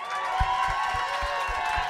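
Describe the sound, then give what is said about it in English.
Dense, steady applause from an audience voting by applause for the contestant Savage Tech in a prize contest in a store, with some voices cheering over it and a regular low thumping beat running underneath for the full two seconds. “And by applause, adamantly indifferent.”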